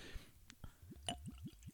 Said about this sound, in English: Ooh. Ooh. That was a nice little pour. That was a good little glug. Yeah. Yeah. Glug it out.